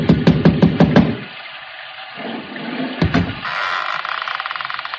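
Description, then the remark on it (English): A quick run of about seven sharp, loud raps on a door, struck with a bronze idol, in the first second, followed by a steady wash of rain-like watery noise with no voices. “I lifted the bronze idol and rapped on the door with it.”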